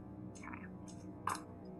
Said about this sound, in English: So roll 2 six-sided dice and add 2 to it, and that's how much damage you do to this guy.